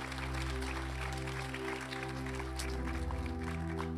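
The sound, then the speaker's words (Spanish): An audience claps together in a sustained burst of applause for the Lord during a church service, the dense patter of many hands running steadily over a low, droning musical hum. “Damos ese aplauso al Señor.”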